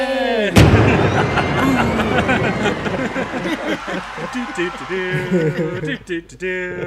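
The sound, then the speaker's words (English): A single loud cannon blast sound effect booms out near the start, opening the game show Fire That Cannon!, followed by a dense, roaring wash of sound with voices and cheering-like noise continuing underneath until the end. “Maybe we can, maybe we can't, but all I know is it's time to play Fire That Cannon!”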